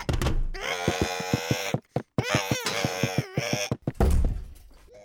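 A harsh, monstrous shriek wails in two long sustained bursts split by a brief break, its strained pitch throbbing with rapid pulses, then gives way to a low rumbling tail.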